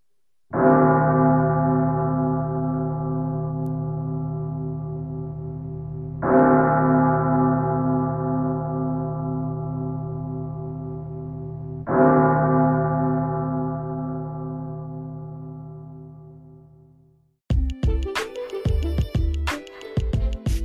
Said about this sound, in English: The bell struck 12.